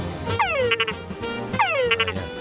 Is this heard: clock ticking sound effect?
no